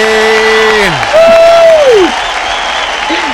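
A crowd claps steadily and loudly throughout, with shrill whoops and whistles rising and sliding down over the dense applause.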